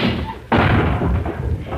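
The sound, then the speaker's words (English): A sudden loud crash of breaking glass as a man walks through a window, mistaking it for a glass door, bursts in after a low rumble, followed by a dense, sustained clatter of falling shards and debris that continues to the end. “Why, you just came in through the window.”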